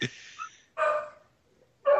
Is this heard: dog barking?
yes